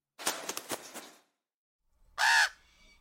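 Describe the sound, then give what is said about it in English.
A raven gives a rapid run of harsh, rasping croaks, then after a short pause lets out one loud, drawn-out caw, with no voices. “So let's move on to the raven, who makes an appearance in the book Wayward that we discussed on our book review.”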